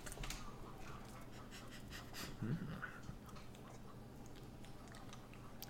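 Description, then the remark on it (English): Wet panting with irregular chewing and smacking clicks, as an animal works at hot, sticky food; the sounds continue steadily over a soft, noisy background with no speech. “Chew it, you idiot. Use your teeth.”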